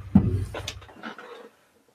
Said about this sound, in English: I'm going to just close that door a little bit so we don't hear Leo complain.